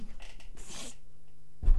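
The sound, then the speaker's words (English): A single sharp sneeze bursts out, a quick breathy intake followed by a hissing explosive puff, then a brief low thump right after. “God bless you”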